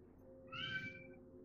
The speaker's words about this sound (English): Somebody could please shut up their cat. Oh, that's me.